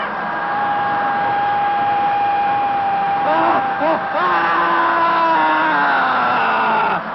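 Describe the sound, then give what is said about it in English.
Several voices scream and wail at once during the screaming phase of dynamic meditation, in long, sustained cries that bend and slide in pitch, loud and continuous for the whole stretch, with no talking. “The next phase, the screaming phase of dynamic meditation, feels like when you finally had an opportunity to throw a tantrum when you were a little kid.”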